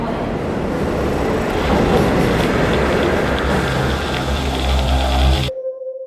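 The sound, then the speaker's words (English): A train rolls along the rails with a loud, steady rumble and rattle for several seconds, then cuts off abruptly into a brief, quiet electronic tone. “A good friend of mine always seems to be having train troubles. Today, we're joining him along for a ride.”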